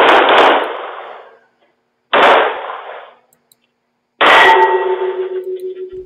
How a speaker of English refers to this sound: Police say he first fired shots inside and didn't hit anyone. He then goes outside where he gets into a shootout with armed security guards through the doors, firing 20-plus shots in all.